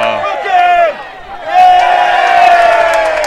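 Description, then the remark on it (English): A football stadium crowd roars and cheers in two sustained surges, the second louder and longer, with whistles and shouts rising above the dense wall of voices, after a player has just received a yellow card. “Big cheer there for Aaron Sibia, who's just got a yellow card”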